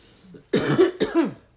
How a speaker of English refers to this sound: Okay, I got a hump in my throat when I got ready to say that. Sorry for that cough, y'all.